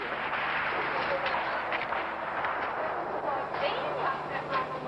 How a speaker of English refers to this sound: Just gunshots.